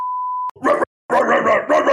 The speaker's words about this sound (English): Oh no, the dogs are in the apartment. He's trying to get out of recording. Oh no, they're oh no, the dogs. Oh no, they're breaking down the door.